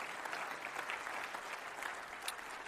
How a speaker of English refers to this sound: Come on, give a clap offering of praise to the Lord.